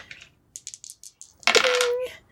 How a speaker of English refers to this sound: Wow, terrible. I got a 3 and a 2. Dice, so neither succeeds.